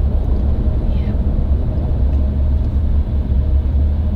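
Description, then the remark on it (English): Inside a car moving through traffic in Miami: a steady, dense low rumble of engine and road noise fills the cabin without a break, with only faint, indistinct murmurs above it. “Oh, we got some traffic here.”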